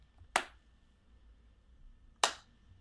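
Two sharp, unhurried, sarcastic hand claps spaced nearly two seconds apart, crisp, with quiet room tone between them and no voices.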